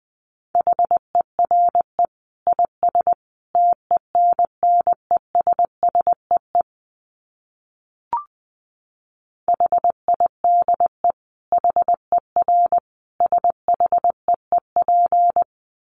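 Morse code at 20 words per minute: a single steady mid-pitched tone keyed into rapid dits and dahs, broken by a pause of several seconds with a brief click, then resuming. No voices.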